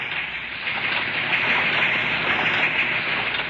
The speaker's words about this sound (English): It sounds a little like a heart pounding and pushing lifeblood through a very tired and busy human body. Well, that's precisely what it does. It's V-mail equipment. This piece happens to be in the Navy's Fleet Post Office in New York.